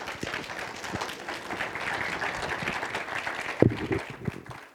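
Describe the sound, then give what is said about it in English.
A church audience claps together for a speaker coming up, a steady, dense wash of applause that fills the room, with a few louder claps standing out near the end. “And so we already clapped, but can we clap one more time”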